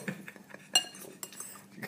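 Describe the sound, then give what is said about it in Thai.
Cutlery and dishes clink and tap against each other in short, irregular bursts as people eat a meal, with a sharper bright chime near the middle, over a low, quiet background murmur. “คือตอนนี้ทุกคนกินข้าวอยู่”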